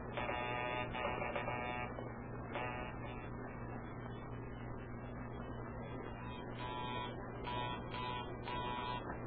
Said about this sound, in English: Just making a check on the phones. Hang up and see if you can hear the others as I ring them.